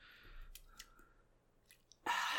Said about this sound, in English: so you have to forgive the clinkling of ice you hear as he drinks his ice water.